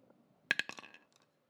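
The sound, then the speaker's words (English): Dice rolled in a game clatter across a hard surface, coming up 19: a burst of sharp, bright clicks that tumble in quick succession and fade into a few light taps, with no voices. “Go ahead and roll again.”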